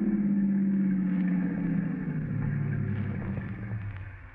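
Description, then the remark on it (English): A car engine hums, then its pitch sinks and the rumble eases as the car slows to a stop in a deserted section of town not far from the Red River Bridge. No one speaks. “Would you stop the car? Stop the car? Sure.”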